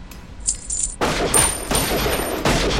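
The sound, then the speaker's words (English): A quick volley of loud gunshots fired at a handful of coins thrown into the air, several sharp cracks in rapid succession that blur into a dense, ringing barrage, preceded by a brief faint high-pitched tinkle. “Woo-wee! Like firecrackers! Dead center, Matthias. Wait, missed one.”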